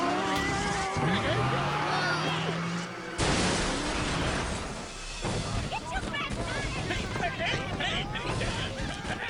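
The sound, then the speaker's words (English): Tires screech as a car skids, then a sudden loud crash as the car crashes into a chicken shop, followed by a dense, noisy commotion with voices shouting. “We crashed the car into the chicken shop.”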